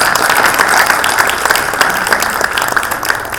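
An audience applauds steadily, a dense wash of many hands clapping at an even loudness for a few seconds, with no voices rising above it.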